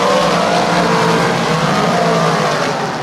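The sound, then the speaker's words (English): Loud, steady roar of race car engines at full throttle on a speedway, cars racing down the backstretch into turns three and four, a dense droning wall of motor noise that holds without a break, with no voices over it. “He'll follow him down the backstretch into turns three and four.”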